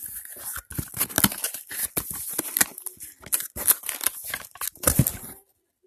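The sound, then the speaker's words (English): A box being opened, with butcher board paper used as packing torn and crinkled in a busy, irregular run of sharp rustling bursts and rips that stop abruptly after about five seconds. “Okay, so let's open this box.”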